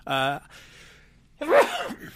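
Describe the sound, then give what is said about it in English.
A single loud sneeze on camera: a voiced "ah" and a breathy inhale build up, then a sharp, explosive burst that trails off quickly. “Boy, what a way to end the show with a great sneeze.”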